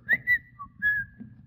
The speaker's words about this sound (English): Oh, I came as fast as I could. I thought you were whistling for me.